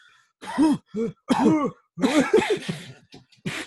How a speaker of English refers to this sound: Oh my God, that was so bad. I was just coughing up a storm for quite a bit. For quite a bit, yeah.